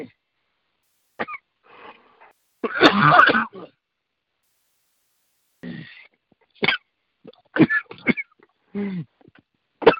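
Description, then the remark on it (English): A man coughs and clears his throat several times, with one strong harsh burst early on, then a cluster of short, scattered hacks and rasps separated by brief silences. “He's coughing.”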